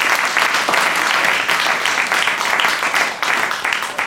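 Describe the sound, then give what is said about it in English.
A debate audience applauds KT Extinction steadily, many hands clapping together in a dense, loud wash of sound that holds for several seconds with slight swells, no voices standing out. “Okay, give KT Extinction a hand there, everybody.”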